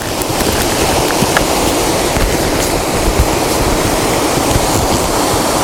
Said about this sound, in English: Waterfall City. And this place is cooler than I remember. Much cooler. So there's the main waterfall there, and there's lots of smaller waterfalls heading down the valley.